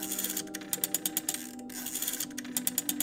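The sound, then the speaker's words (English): Quick runs of sharp, even mechanical clicks as numbers are dialed on the small rotary dial of a phone, its handset picked up, broken by brief pauses between numbers, with a low steady hum underneath and no voices. “She picked up the handset again and started dialing numbers on the small rotary dial.”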